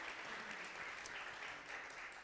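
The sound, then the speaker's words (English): An audience at a preacher's sermon claps together in a dense, steady wash of applause that holds at an even, fairly loud level for a couple of seconds, with no voices standing out. “One person claps, everybody claps.”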